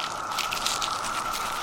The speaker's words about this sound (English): I'll just crunch these exoskeletons for you. I have three of them here, and I have my garden gloves on.